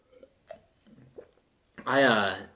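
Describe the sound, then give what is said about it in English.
A few soft, brief slurping sips of an IPA beer, followed by a loud, drawn-out satisfied vocal sigh, like someone savoring a drink. “That was a good sip.”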